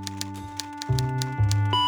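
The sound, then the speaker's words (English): Steady, evenly spaced keyboard clicks, about four per second, as someone types on a desk computer trying to guess a password, over a sustained musical backdrop with low bass notes that shift partway through. No one speaks. “And then Manny sees Domino's computer on his desk. I'm gonna try to guess his password. He starts typing.”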